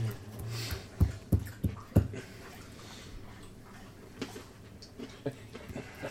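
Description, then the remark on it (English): A dog laps water, a quick series of wet, rhythmic slurps that fade to softer, scattered laps against a quiet background. “The dog's drinking.”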